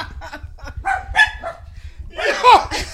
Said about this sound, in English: You hear the dog?